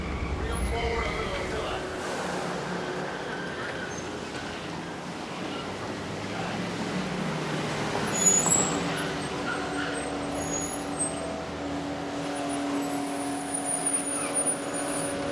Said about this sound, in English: All these cars coming up. Yeah, all these cars pulling up. The whole entourage.